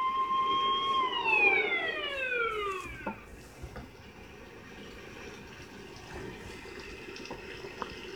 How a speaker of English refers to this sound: Another paramedic ambulance.